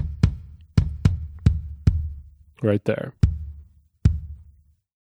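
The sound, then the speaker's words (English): A kick drum, recorded with two microphones whose sounds are blended together, is struck about seven times in an uneven pattern, each hit a loud, deep thump with a short ringing decay, and a voice briefly speaks between the hits. “the benefit of having 2 is you can blend the sounds between the two and get the best of both worlds”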